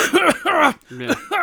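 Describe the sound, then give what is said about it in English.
A few quick coughs and throat-clearing grunts land right on the microphone in short bursts, with a brief pause partway through. “I get the cough on the mic again.”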